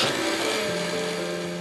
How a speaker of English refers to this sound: Let's run it through a blender with some fruit.